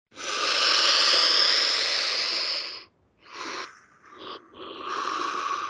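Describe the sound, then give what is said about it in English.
Loud, forceful breathing during a group breathing exercise: a long harsh rushing exhale, then a series of quick sharp breaths in an uneven rhythm, airy and hissing with no talking. “Okay, stop breathing with that now.”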